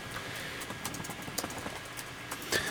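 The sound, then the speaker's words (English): Soft, irregular clicking of keys on a computer keyboard, a rapid scattering of light taps at low volume with no one speaking, ending in a couple of slightly sharper strokes. “I'm typing.”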